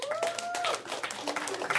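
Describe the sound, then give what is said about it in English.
A crowd claps and cheers for a couple of seconds, answering a comedian's question about which women are wearing makeup, a dense, steady patter of hands mixed with whoops and a high whistle-like cry from the audience. “How many women here, by applause, are wearing makeup tonight?”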